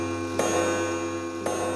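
A clock in a modern building ticks twice, about a second apart, each tick a sharp, distinct click over a steady low hum. No one speaks.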